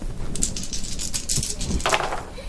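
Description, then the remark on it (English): Four dice rattle and clatter across a hard surface in a quick run of bright clicks and taps, with a brief burst of tumbling near the end and no voices. “Roll four more dice.”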